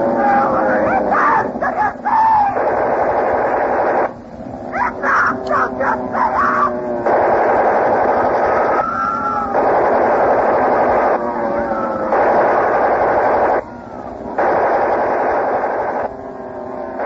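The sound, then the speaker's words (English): A loud, chaotic air raid from Archibald MacLeish's Air Raid, with planes diving on a town: a dense, continuous roar of engines with whining, shifting tones, broken by sharp bursts and crackling blasts that suggest bombs and gunfire, with brief dips between surges. “They'll dive, they're ready to dive. They're steady, they're heading down. They're dead on the town.”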